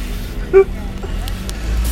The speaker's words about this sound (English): I've got me fucking buses.